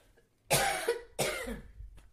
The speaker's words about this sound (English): I'm so upset. I'm coughing.